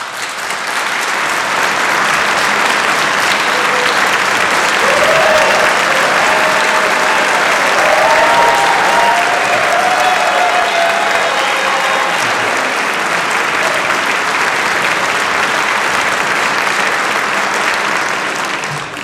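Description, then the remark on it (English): Sustained audience applause during a speech about the Minnesota legislature, a dense, steady wash of clapping that holds loud and even for nearly twenty seconds, with a few faint cheers or whoops rising through it. “If the people of Minnesota want to see an evenly divided legislature, well, you can judge for yourself on the applause-o-meter there.”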